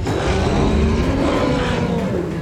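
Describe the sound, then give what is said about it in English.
A long, loud roar from the Bahkauv, a beast with cow legs, sounding like a deep, drawn-out moo, holding steady for a couple of seconds with a rough, growling edge and no talking. “The beast gave one more long moo roar.”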